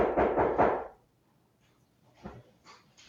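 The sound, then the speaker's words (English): A FedEx delivery person knocks on a door: a quick series of three or four firm, loud knocks, followed by a quiet pause and a few faint, scattered thumps. “So of course, now that we just started the podcast, someone has come, FedEx has come to the door.”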